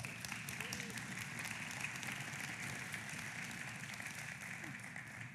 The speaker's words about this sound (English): Then give her a hand clap.